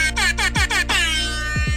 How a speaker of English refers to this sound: I've always wanted to do that. That's why I started the podcast all along. I just wanted to blast the rap air horn meme.